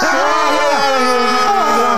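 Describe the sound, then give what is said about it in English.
A person yells loudly at trees for two seconds, the raised voice wavering in pitch without clear words, strained, with no pauses or quieter moments. “Hey, welcome back to Yelling at Trees podcast, where sometimes we yell at trees, and it sounds a little bit like this.”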